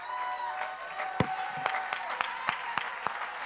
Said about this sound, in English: Every time you clap your hands, you're reminding the devil, I'm free.